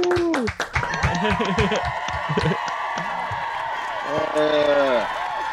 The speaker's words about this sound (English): Yeah, round of applause. Ooh. Round of applause.